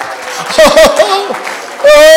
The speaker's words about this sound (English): Why don't you all clap your hands and worship him just a minute? Come on, let's give him praise like you crave him.